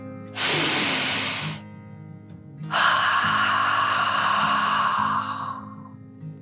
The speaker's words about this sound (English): She took one last deep dragon breath in and out.